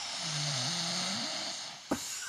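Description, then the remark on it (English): A single drawn-out, rumbling snore with a wavering low pitch, heard over a steady hiss of background noise, followed by a brief sharp click near the end. “Show us the snore.”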